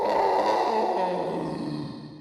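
A long, anguished scream that periodically comes out of a cavern, loud and sustained, with a raw, growling edge as its pitch slowly sinks over about two seconds, echoing.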